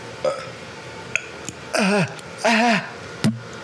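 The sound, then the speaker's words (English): Two drawn-out, gurgling burps in quick succession, each under half a second and fairly loud, with a few small clicks and mouth noises around them and no talking. “Oh, I'm gonna burp.”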